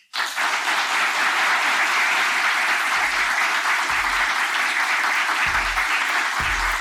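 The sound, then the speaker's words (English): Steady, loud applause from an audience for a panel starts abruptly and holds at an even level throughout, a dense wash of many hands clapping with a few low thumps underneath. “And I think we need an extra round of applause, please, for this panel.”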